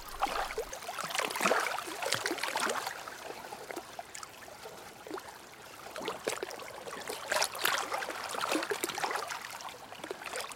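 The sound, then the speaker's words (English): Continuous rushing, splashing water of a fast-flowing river with busy bubbling and gurgling textures, steady, swelling and easing in intensity throughout with no voices. “Look at areas where the flow is clearly going to be fast, in which case I get very complex water textures, which I love, and then just let my ears guide me.”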